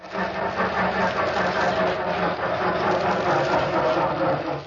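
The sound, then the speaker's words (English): A car engine in The Great Gildersleeve cranks and sputters without catching, failing to start, a loud, rough, continuous mechanical churning that holds steady for several seconds with no voices over it. “Darn car. Makes me so darn mad I'd like to give it a good kick in the...”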